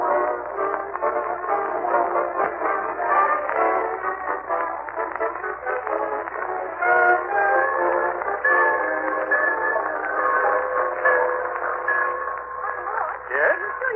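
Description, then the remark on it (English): A train pulls into the Summerfield Railroad Station with a continuous, steady rumble and clatter, a drawn-out whistle rising in the second half, all sounding muffled and narrow like an old recording. “And now let's visit our friend, the great Gildersleeve, as he and Marjorie and Leroy wait in the Summerfield Railroad Station for the arrival of that well-known authoress, lecturer, and second cousin, Octavia Gildersleeve.”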